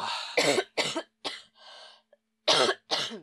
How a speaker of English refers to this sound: It's some COVID. COVID cough.